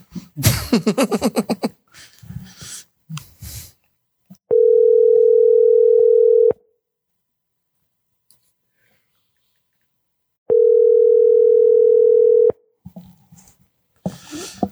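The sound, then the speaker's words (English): A phone ringback tone sounds twice on another try at calling a number, each steady two-second burst followed by a long silence, signalling a call that goes unanswered. Brief rustling and muffled noises come before and after. “I'll try one more time with this number.”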